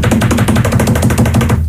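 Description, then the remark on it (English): A voice imitates the footsteps of somebody running up the street behind the speaker: a rapid, steady patter of loud percussive taps, roughly ten per second, lasting under two seconds before stopping abruptly. “Like somebody running up the street behind me.”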